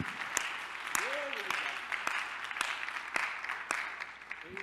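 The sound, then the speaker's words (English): A church audience claps together in steady, dense applause as people are seated, with a few sharper individual claps standing out and a brief voice rising faintly underneath the crowd noise. “I feel it in my bones, so let's go ahead and give him another hand clap as you're seated.”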